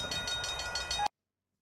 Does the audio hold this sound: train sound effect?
yes